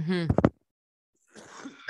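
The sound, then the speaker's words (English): A single sneeze: a short voiced build-up breaking into sharp bursts, then a pause and some soft, breathy noise. “Bless you.”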